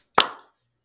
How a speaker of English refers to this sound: On three, clap. One, two, three.